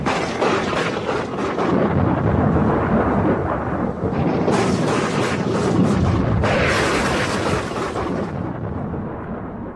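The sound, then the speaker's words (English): A fierce storm at sea roars without pause, rolling thunder rumbling beneath a dense wash of wind and rain, with louder crashing surges partway through. Loud, no voices. “One of the greatest storms on record has recently been experienced here, with a result both strange and unique.”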